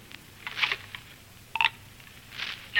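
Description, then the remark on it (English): A telephone being dialed in a phone booth: three short, bright tone bursts spaced unevenly about a second apart over a low steady hum, with no one speaking. “All right, there's the phone booth. Make your legal call.”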